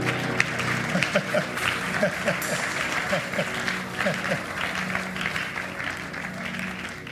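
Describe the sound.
An audience claps steadily for several seconds, a dense, continuous patter of many hands with a few raised voices and murmurs mixed in beneath.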